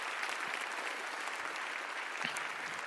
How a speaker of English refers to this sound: Didn't they do an amazing job? Let's give … a round of applause for that.